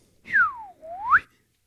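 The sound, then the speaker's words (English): A voice mimics a slide whistle with the mouth alone: a clear whistled tone glides smoothly down, then sweeps back up, fairly loud, lasting about a second with no talking. “I really need to get a slide whistle.”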